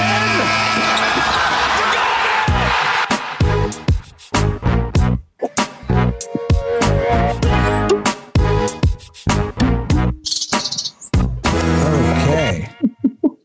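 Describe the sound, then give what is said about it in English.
A loud, busy musical sting for a segment about raptors, of rapid percussive hits and bright tonal bird chirps, stuttering in choppy bursts before fading into bird sounds and cutting off into near silence at the end. “I'm just laughing at the birds being the raptor sting.”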